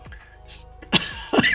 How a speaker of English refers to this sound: I was going to say something funny and I started coughing.